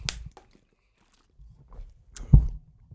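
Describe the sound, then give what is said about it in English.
Quiet sounds of someone taking a sip of a drink: a brief click, soft handling noises and a gulp, then a sharper knock like a cup being set down. No one speaks. “I gotta take another drink real quick.”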